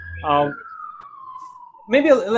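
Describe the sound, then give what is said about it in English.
A passing emergency siren, its steady wail sliding downward in pitch as it moves away. Brief bursts of voices come before and after it. “I had a siren passing by.”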